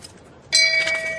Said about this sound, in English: Ring the shame bell. Yeah, exactly. Shame. Cue it, Matt. Shame. Matt, you can ring the shame bell.